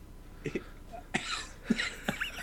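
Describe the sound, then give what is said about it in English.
A person who had been holding in a cough coughs about four times in quick succession, short harsh bursts spaced roughly half a second apart, not loud, with no talking. “I've been holding in a cough the whole intro.”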